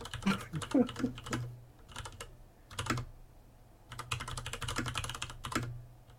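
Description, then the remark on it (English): Rapid clicking keystrokes from a computer keyboard come in bursts with short pauses, fairly loud over a low steady hum, with no talking. “Your wrist typing. I am. Oh, well, it sounds worse.”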